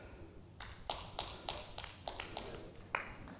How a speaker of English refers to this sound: Praise you, Lord. Three people clapped.